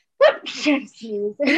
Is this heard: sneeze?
yes